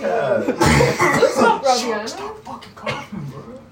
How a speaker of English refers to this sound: Stop fucking coughing, bro. Oh my god. You're fucking up the recording, dude.